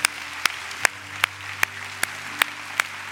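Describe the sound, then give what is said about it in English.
An audience claps together in praise to the Lord in a steady unison beat, about eight sharp claps roughly every half second, over a low sustained hum, with no one speaking. “Come on, can you give the Lord a hand clap of praise today?”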